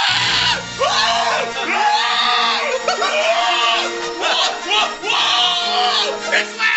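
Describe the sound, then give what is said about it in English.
A full-house audience cheers and screams at a two-minute Star Wars trailer in a sustained, excited roar, with high-pitched shrieks and whoops rising and falling over a dense wash of voices, plus a low hum beneath. “There's just lots of people cheering a trailer, a 2 minute.”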